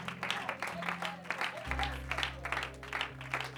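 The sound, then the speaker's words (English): An audience claps steadily and enthusiastically in worship of Jesus, a dense wash of many hands, while sustained low organ-like notes hold underneath. “Why don't you clap in the manner that, what manner of man is this, that even the winds and the waves obey him?”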